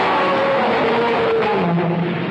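A loud, sustained roar-like groan slides downward in pitch over a dense mechanical rumble: the truck in the film Duel flying off the cliff, blended with a dinosaur roar sound effect from the movie The Land Unknown. It lasts a couple of seconds with no talking.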